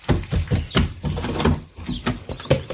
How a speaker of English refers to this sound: Oh dear, the door's stuck.